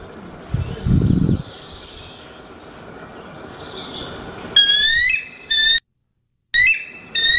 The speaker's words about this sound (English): This is a bald eagle.